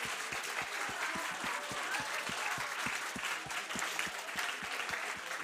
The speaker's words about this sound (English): Okay, come on, give yourselves a clap. 拍掌。 Very good.